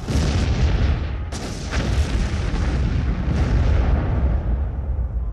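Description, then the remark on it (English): A boat, the Flora, is blown up: a loud, sustained explosion roars with heavy low rumbling, punctuated by a couple of sharp cracking bursts, then slowly settles into a continuing deep rumble. No one speaks. “They blew it up. They blew up the boat.”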